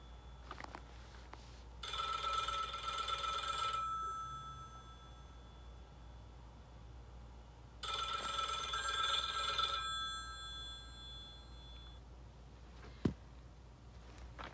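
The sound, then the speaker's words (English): A telephone rings twice, each trilling electronic burst lasting about two seconds with a long pause between, over a quiet background hum, followed by a brief click near the end. “As I sat there listening to the phone ring, and that was the second ring, I'm thinking, okay, help me to listen well.”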